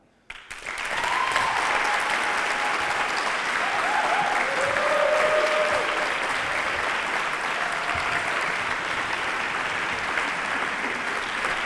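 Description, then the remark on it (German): An audience in a hall filled with about 120 people bursts into sustained practice applause after a brief silence, a dense, steady wash of many hands clapping for about ten seconds, loud throughout with faint whoops or voices mixed in. “Also wie klingt denn so ein ordentlicher 570-Mann-Applaus in einer 120-Mann gefüllten Halle.”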